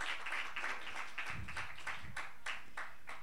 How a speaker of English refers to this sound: Oh, give Him a great big hand clap. Praise God.